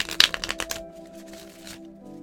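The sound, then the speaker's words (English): The Moody deck of cards is shuffled before drawing a card of the week: a quick burst of crisp riffling flutters, then a softer, longer shuffle, over quiet background music. “I'm giving the cards a good shuffle.”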